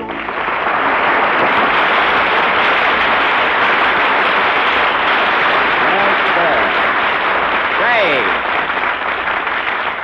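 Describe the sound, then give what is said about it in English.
A studio audience applauds loudly and steadily for about ten seconds, a dense wash of clapping with no pauses, and a few faint whistle-like tones rising near the end. “But say, I wonder where all that applause came from.”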